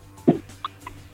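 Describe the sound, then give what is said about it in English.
A single short, sharp sneeze bursts out, followed by a couple of faint squeaky sounds, with no talking around it. “Bless you, Oga President”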